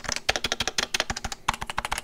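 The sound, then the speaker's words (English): Rapid, clacky typing on a factory-stock mechanical keyboard without silencing rings, fairly loud, with sharp individual keystrokes in a quick irregular rhythm and a brief pause midway. “This one is factory. So this doesn't have silencing rings on it, I don't think.”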